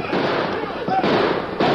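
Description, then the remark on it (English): Guns are fired from the rear of a camp's herd of beef cattle to stampede the steers: a few loud, sharp bangs at uneven intervals ring out over a steady, dense roar of noise that never lets up. “They raced to the rear of the herd of cattle which the camp tended for beef and fired their guns to stampede the steers.”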